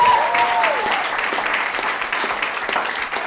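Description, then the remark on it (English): An audience breaks into sustained applause for Vietnam, after an audience member says their family is from there, dense overlapping claps holding steady and fairly loud throughout, with a brief whistle-like tone sliding down near the start. “Where's your family from? Vietnam, clap it up for Vietnam.”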